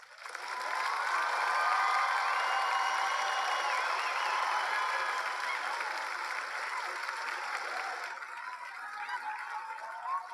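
Canned audience cheering, a dense roar of whoops and shouts that holds loud and steady for about ten seconds and thins slightly near the end. No one speaks over it.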